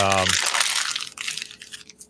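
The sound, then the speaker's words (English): Paper being crunched and crinkled as a Harbor Freight ad is separated from it, a loud, continuous rustling crackle that follows a brief snippet of a voice at the very start. “can you crunch some more paper, please? It did sound really loud.”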